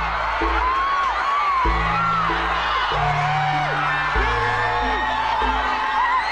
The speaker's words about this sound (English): Outside were hundreds of fans who, when they caught sight of him, roared with cheers and applause.